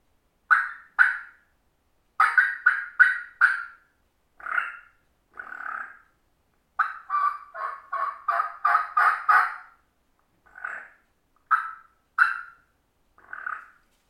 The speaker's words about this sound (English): It's crisp. Not bad. Clean. So that's what a Smith turkey call sounds like.